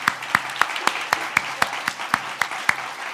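Applause in a steady rhythm: about a dozen sharp, evenly spaced claps, moderately loud, with no one speaking over them.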